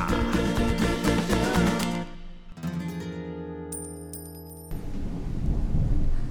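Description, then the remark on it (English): Loud thunder rumbles over a dense wash of rain, broken in the middle by a stretch of sustained ringing tones before the heavy storm noise surges back. “Literal live thunder and lightning introduces us into a very, very special episode of Stupid Hearts Club,”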